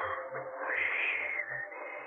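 A person whistles a soft, hooting call that resembles an owl, a steady low tone held over a constant wash of background noise, with no talking.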